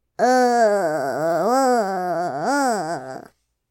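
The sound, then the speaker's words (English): A person imitates a zombie with one sustained, groaning growl lasting about three seconds, its low pitch wavering up and down in slow swells before cutting off. “Some zombies just, like, growl thing.”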